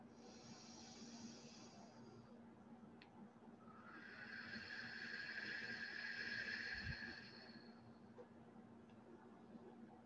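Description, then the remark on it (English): Two slow, deep breaths down into the belly: a soft airy inhale, a short pause, then a longer, louder rushing exhale, with no talking over a faint steady hum. “Just go ahead and take a few deep breaths, very deep down into your belly. And exhale.”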